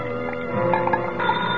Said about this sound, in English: And that was the call I should have never answered. But at night, 8 stories up in an empty office building, that ringing sounded urgent. Like it was the most important thing in my lonely little world.